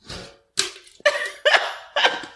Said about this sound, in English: Crush our cans together and make a noise. Do a clink.